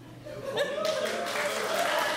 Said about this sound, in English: How many of you, by a round of applause, would have chosen roof?